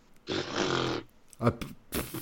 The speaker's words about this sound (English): Sorry, I was typing, so I muted my microphone, so you didn't hear me scoff initially, but I gave you a second scoff there just to satisfy your chuckle desire. There you go, second scoff.